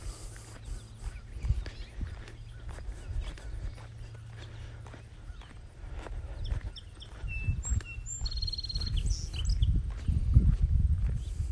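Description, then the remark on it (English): A few bright bird chirps ring out in a short burst partway through on a windy country road, set against a steady clip-clop of horse hooves and low outdoor rumble. “What a pretty bird song.”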